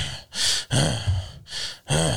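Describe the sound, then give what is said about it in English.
A man mimics the heavy, labored breathing of someone who has walked up five steps, alternating loud airy inhales with voiced, groaning exhales in a slow, uneven rhythm, fairly loud. “You start breathing heavy, you know. You take, you walk up five steps, you.”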